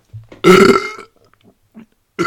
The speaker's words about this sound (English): Hold on. I'm going to try and do this belch. Hold on.